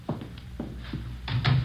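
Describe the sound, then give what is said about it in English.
A few soft footsteps are followed by a louder door swinging shut with a thud and a latch click, with no one talking. “close the door, will you?”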